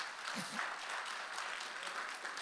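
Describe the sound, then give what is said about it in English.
A crowd applauds the Lord steadily, a dense wash of many hands clapping at an even, sustained level with no individual claps standing out, and a brief murmur of voices underneath near the start. “Give a round of applause to the Lord.”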